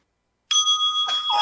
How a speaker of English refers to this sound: She got the bell ready, yeah. Just chiming in. Mindful check! Yeah, mindful check is chiming in on how we're feeling.